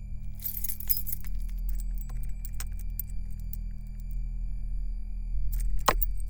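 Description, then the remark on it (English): A brief jingle of keys as the key for turning over an engine is handed over, bright metallic clinks clustered near the start, over a steady low hum, followed by scattered faint ticks and one sharp click near the end. “Here's the key.”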